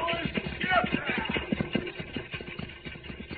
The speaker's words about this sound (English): Look, Cisco, the stagecoach to Brimstone comes. They must be in a hurry. Those horses are at a high gallop.